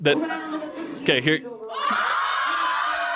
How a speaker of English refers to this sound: So that sounds surprised. And there you are. Yeah. And then you see BYU up there, and you guys cheer, and you get excited.